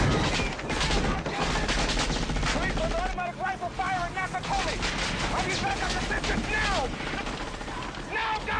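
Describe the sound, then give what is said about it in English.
Loud, sustained bursts of rapid gunfire from an action movie scene in which Bruce Willis, the hero, shoots at a man who wrecks his car trying to get away, with shouting voices and chaotic crashing noise mixed in throughout. “He has no clue that it's actually Bruce Willis shooting at him, the hero.”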